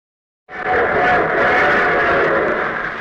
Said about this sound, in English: Here comes our star-studded show train.